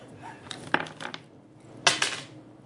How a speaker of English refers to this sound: Roll a d4 for damage.